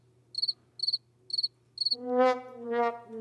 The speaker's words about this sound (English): Sorry, the crickets were speaking.